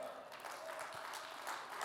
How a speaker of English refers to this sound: And now that my name is written in the book of life in heaven, can I get an amen and a clap this morning?